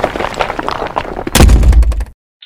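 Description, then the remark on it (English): A sudden, loud thud of rocks, thrown by teenagers at a trick-or-treater ringing a doorbell, striking someone's face, followed by a brief rumbling clatter that cuts off abruptly into silence, with rustling noise beforehand. “I literally just got rocks thrown in my face.”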